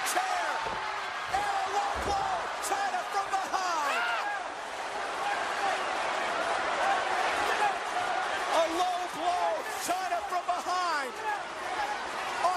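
A few sharp metallic slams as Stone Cold Steve Austin hits Kane with a steel chair in a wrestling match cut through the loud, constant roar and shouting of a large arena crowd.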